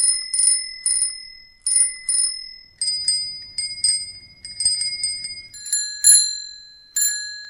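Little chrome bicycle bells on handlebars ring in quick repeated bursts of bright metallic dings, loud, with the pitch shifting a few times as if different bells are rung in turn, in Toronto. No voices.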